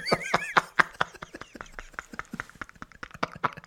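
A horse whinnies with a wavering, shaky pitch at the start, followed by a run of sharp, irregular knocks and snorts that sound fairly loud.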